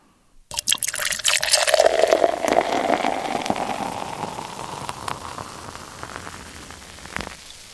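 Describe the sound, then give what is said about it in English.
A drink is poured steadily into a glass for about seven seconds, a splashy gurgle whose pitch shifts as it fills, then a faint final drip or clink at the end. “That poured as good as it sounded to only the listeners.”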